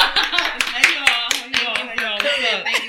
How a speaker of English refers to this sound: You got to clap for you.